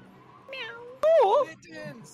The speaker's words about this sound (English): That cat is so upset right now.